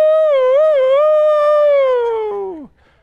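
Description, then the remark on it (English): A voice imitates a puppy's howl, heard around 2:00 in the morning, that sounds like a rooster crowing: one long, loud, wavering note held for over two seconds, then sliding down and cutting off. “She said, it's that puppy. I said, a puppy crowing like a rooster?”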